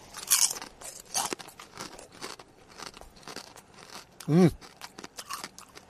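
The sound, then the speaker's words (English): Loud crunching of Miss Vicky's Applewood Smoked Barbecue potato chips being chewed, with irregular crisp bursts and crackles spread across several seconds, plus a brief vocal murmur near the end. “I've got my Miss Vicky's Applewood Smoked Barbecue potato chips.”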